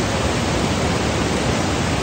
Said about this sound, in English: It just flows. It's like the water behind me.